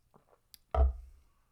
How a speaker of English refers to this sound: Let's take a sip of water real quick and move on to our final segment.